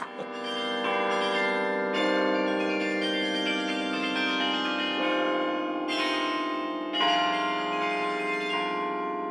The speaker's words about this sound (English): They're modern, but this is an excellent carillon to play modern stuff on. The treble bells are very powerful. So you can really play and get fireworks out of the tower.